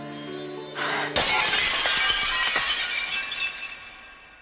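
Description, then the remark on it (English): Glass shatters with a sudden loud crash, followed by a bright spray of tinkling shards that rings on and slowly fades over a few seconds. A low hum sits underneath before the break. “Probably means that she can take no risks whatsoever in the world, because if she does bump into anything, she will break and she will become a terrifying tangle of flesh and glass.”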